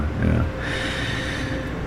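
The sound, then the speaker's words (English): A person mimics snoring with a single rough, rumbling snort that trails off into a steady nasal drone, fairly loud, with no other sounds around it. “That young guy in his denim jacket, he's just snoring at this point.”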